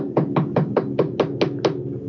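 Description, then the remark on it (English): A rapid series of eight firm knocks on a wooden door, evenly spaced, with no voices over them. “I'm knocking on the door.”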